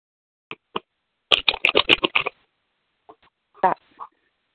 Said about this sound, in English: So just tell me when to stop shuffling these cards, okay? I didn't catch that. Tell me when to stop shuffling these cards. Okay.